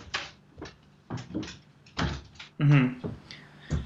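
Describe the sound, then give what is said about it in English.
A dog named Leo scratches at a door in a series of irregular, rasping bursts and soft thumps, with a brief voiced sound partway through. “Sorry, I've got my little companion Leo, my dog, and he was just scratching on the door, and I don't know why.”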